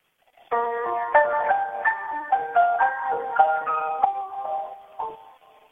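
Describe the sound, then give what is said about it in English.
A recorded song plays back through a phone held up to a computer speaker, thin and gritty with the highs cut off, its sustained melodic notes shifting steadily in pitch for several seconds with no talking over it. “It's my phone being held up to a computer speaker.”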